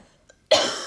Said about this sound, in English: I'm so sorry, guys. I keep coughing. It's triggering me.